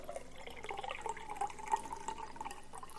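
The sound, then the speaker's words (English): Water pours steadily from a Brita filter pitcher into a cup, a continuous trickling splash with small bright glugs rising in pitch as it fills. No one speaks. “Poured water in a cup from the Brita filter.”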